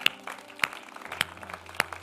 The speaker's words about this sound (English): If you believe that, why don't you give a clap offering right now and just thank.